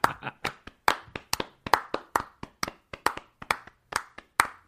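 crowd, polite applause

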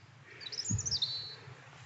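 bird, european robin singing

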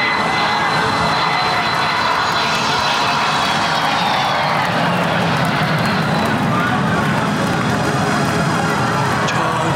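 vehicle, airplane engine

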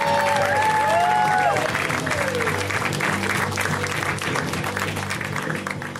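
crowd, audience applause and cheering

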